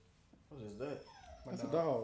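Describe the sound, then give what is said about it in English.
A dog whimpers in two drawn-out, wavering whines, with a brief thin squeal between them, moderately loud. “That's a dog.”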